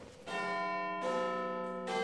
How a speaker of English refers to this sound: But the castle clock struck 7:30, dinner was at 8